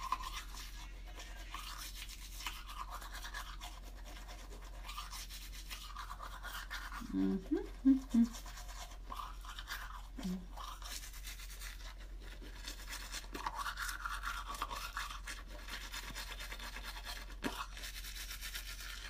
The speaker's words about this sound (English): So I like to brush my teeth.